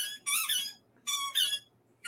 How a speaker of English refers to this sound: he's loving the squeaky ball. My dog is looking over her shoulder like, oh, yeah.